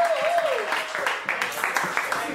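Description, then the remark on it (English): An audience applauds to welcome the next comedian, a dense, steady patter of clapping lasting a couple of seconds, a high voiced whoop rising and falling over the start of it. “Everyone clap your hands right now for”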